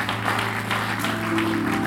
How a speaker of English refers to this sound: Clap your hands if you were blessed by the word. It's up right there. If you were blessed by the word, clap your hands. Glory to God.